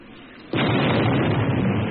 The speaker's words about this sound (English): And then a second ball of fire rose from the bow of the ship. And then another and another explosion until instead of a ship, I was looking only at fire, and within the fire I thought I could see the ship rise into the air.